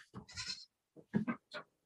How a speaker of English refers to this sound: I've got some goats running around here. They've got a sort of a setup. Got some boxes for them to jump on, and there's a drum set on its side.